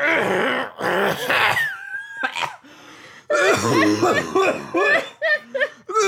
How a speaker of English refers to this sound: Listeners, that was a 100% real cough. That voice just did a real number on me.